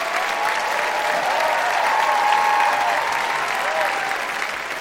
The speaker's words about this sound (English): I want to thank both of you for being here. And I want to have this audience applaud Sonam Avsesian, Matt Gourley. Let's hear it for them.